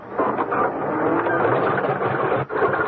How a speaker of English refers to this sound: Well, what's wrong? Why doesn't it catch? They've done something with the engine. Oh, but what? That's what I'm trying to find out. Why doesn't this damn thing turn over?